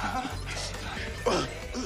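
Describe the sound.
A dog gives a few short, high yips and barks, sharpest just past the midpoint, over a steady noisy background with low rumble and muffled voices.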